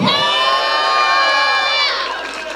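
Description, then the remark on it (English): A crowd cheers and shouts loudly and continuously, making noise for Jesus: a dense wall of whoops and high voices that holds steady for a couple of seconds before starting to fade. “Stop the applause, make noise for Jesus, go.”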